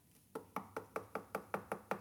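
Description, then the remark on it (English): A rapid, steady run of about eight or nine knocks on a hospital room door, evenly spaced, with no voices, just a quiet background before the knocking starts. “I knocked on the door, and somebody said, "Come in."”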